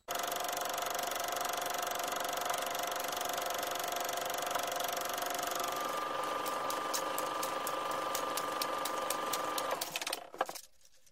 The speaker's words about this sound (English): What do we, film projector, right? That's what we do? Yeah, yep, uh-huh. Cue the film projector. And here we go.